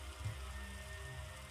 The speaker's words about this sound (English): You get closer, closer. Rain gets heavier. And the storm seems to increase in its intensity. Some thunder starts to roll more frequently, heavier upon you.